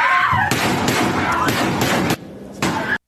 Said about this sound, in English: So a lot of gunfire, a lot of screaming, students trying to hide, students running for their lives. It was terrible and terrifying.